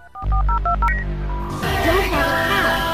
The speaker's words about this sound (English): is it the phone? Yeah, Scott was calling on a landline